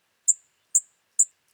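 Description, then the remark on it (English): Short, bright, high-pitched bird chirps repeat in a steady beat, four crisp ticks about half a second apart, used as a hi-hat pattern with no voices; the hi-hat is built from two bird sounds, a Nilgiri flapecker heard in Manipal and a Tasmanian scrub wren heard in Tasmania. “For the hi-hat, we used two different sounds. A bird I heard often in Manipal, the Nilgiri flapecker.”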